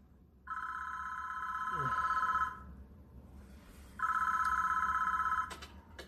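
A telephone rings twice, each ring a sustained electronic trill lasting about two seconds with a short pause between, fairly loud over a low background hum.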